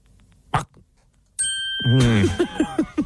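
A bright microwave ding rings out with a steady, sustained tone, and a voice then comes in over it with a short run of rhythmic, pitched vocal bursts.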